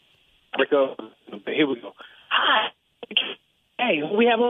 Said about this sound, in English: You're breaking up on us. We got a bad connection